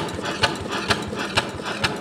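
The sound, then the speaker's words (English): A steam engine called Roy, with a steam-powered metal wheel, drives metal gears and pistons, thumping in a steady beat about twice a second over a continuous whirring mechanical hum, with no voices. “a metal wheel, and above that, a couple metal gears and pistons pump furiously.”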